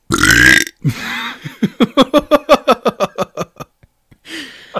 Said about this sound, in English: Oh boy, I'm gonna apologize in advance for the rest of the burps that we have throughout this episode. I didn't know Bang was carbonated as well. I probably should have assumed.